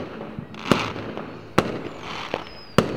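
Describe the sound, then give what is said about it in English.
Four fireworks burst in the night sky, three sharp booms and a softer pop spaced irregularly over a few seconds, echoing faintly against a low, steady background rumble. “four more fireworks explode through the night sky.”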